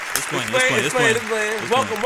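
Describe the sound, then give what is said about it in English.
A burst of audience applause and cheering welcoming guest Charleston White, fairly loud, with steady clapping under excited voices that whoop and call out throughout the short stretch. “Round of applause again for my man, Charleston White.”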